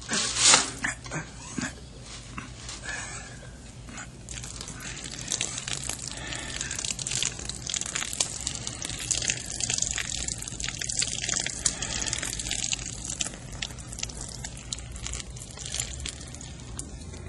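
A steady stream of liquid pours out of a can as it is slowly tipped until empty, splashing and gurgling continuously for several seconds after a brief sharp clink at the start.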